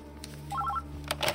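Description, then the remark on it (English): A quick run of short, bright telephone keypad tones, several beeps dialed in rapid succession over a low steady hum, followed by a couple of soft clicks and rustles. “Oh, where's the phone?”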